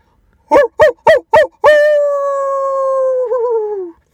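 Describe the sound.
A person imitates a howl as a goodbye: four quick barking yelps followed by one long, drawn-out wavering howl that slowly falls in pitch, loud.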